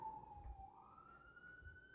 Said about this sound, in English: So then you start... this fucking siren. So then you start doing... This is our life in New York on the air.